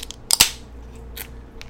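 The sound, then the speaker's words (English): A beer can cracks open with a sharp snap and a quick burst of fizzy hiss, followed by a couple of softer hissing puffs. It's fairly loud, with no talking. “I'm going to crack this.”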